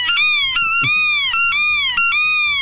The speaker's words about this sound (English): It's not working. Somebody said I need to turn the duck call around.